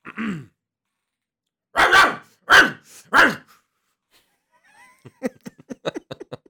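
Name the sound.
dog barking and growling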